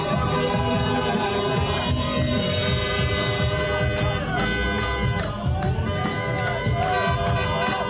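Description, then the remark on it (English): A loud, dense street crowd in London cheers and shouts continuously as men run through the streets waving Palestinian flags, with a jumble of voices, running footsteps and scattered high whistles or horn toots rising above the steady roar. “That's what they're cheering.”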